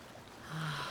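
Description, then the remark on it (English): A brief wash of waves crashing onto a shore as the wind blows, swelling in loudness halfway through with a low steady hum underneath, heard alone with no voices. “The water is crashing to the shore and the wind is blowing and drawing me even deeper within.”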